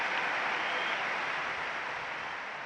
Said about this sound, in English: It has burned so brightly here in London 2012, but now it's gone. Huge applause all around the arena.